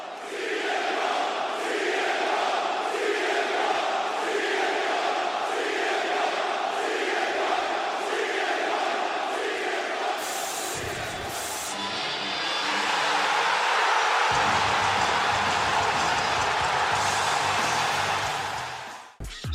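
A huge arena crowd at the United Center in Chicago on a Friday night, cheering CM Punk's return to the pro wrestling ring, roars continuously, with rhythmic rising-and-falling chanting early on, then swelling into a dense, sustained wall of loud cheering and screaming with no individual speech.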